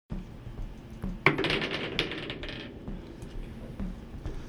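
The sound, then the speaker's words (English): Dice are rolled at a table in a basement and clatter onto the hard tabletop with a sharp first impact, then a quick burst of rattling bounces that fade out over about a second, fairly loud. “Let's head down to the basement, sit at the table, and roll some dice.”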